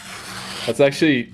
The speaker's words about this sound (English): Let's try the utility knife on my notes here and see if it cuts the paper. How sharp is it? So here we go. 3, 2, 1. And look at that.